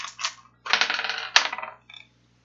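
Dice are rolled for a listen check in a game, rattling and tumbling across a hard table in a few quick bursts, clattering loudly before a last faint click as they settle; no voices.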